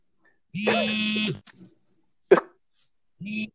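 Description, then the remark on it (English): A mobile phone buzzes with a harsh, steady electronic tone for about a second, then after a pause and a brief knock it buzzes again in a shorter burst. “Yo, who phone going on?”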